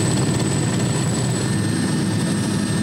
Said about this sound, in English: They quickly unload the helicopter, struggling against the whir of the blades, which never stop.